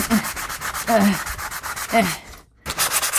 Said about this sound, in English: I have clear textured gesso. Try that. Let me sand a little bit more. Let's see if I could just sand the shine off. That'd be the easiest thing.